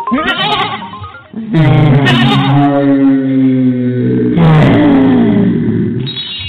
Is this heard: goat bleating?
yes